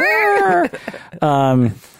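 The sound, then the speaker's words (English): A voice imitates the creaking door-opening sound effect from movies with two drawn-out, strained tones: the first wavers and sinks, and after a short break the second holds steady before dropping away. “You know that sound effect in all the movies when the doors open? Yeah. That creak sound?”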